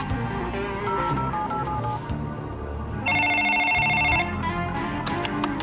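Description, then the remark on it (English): A cell phone redials and rings: short electronic tones, then a loud, steady ringing tone lasting about a second, set against a busy, tonal background with sharp clicks near the end. “This is your cell phone. I'm going to press redial.”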